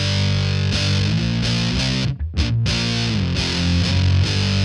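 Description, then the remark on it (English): Heavily fuzzed electric guitar played through a fuzz pedal on its Pi setting, thick sustained chords with a buzzing, saturated tone, a brief choppy break in the middle, then loud droning fuzz resuming. No one speaks. “And that's got more of like your Angry Bees kind of fuzz sound.”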